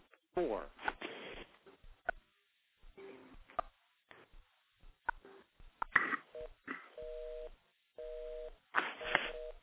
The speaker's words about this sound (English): Okay, so you probably can hear those, but those are touch tones, so those little things are getting notched out.